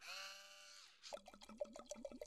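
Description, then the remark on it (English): Sweet white Italian wine is poured into a glass, starting with a brief ringing tone that slides down, then a quick run of bubbly glugs as the liquid flows out. No one speaks. “And you know when you pour your wine in your glass, you got to do your little shake around the glass.”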